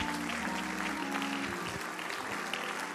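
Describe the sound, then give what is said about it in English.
A crowd claps hands together unto the Lord after a prayer, a steady, sustained burst of applause that stays loud and dense throughout, with a low hum running underneath. “Can we clap our hands one more time unto the Lord?”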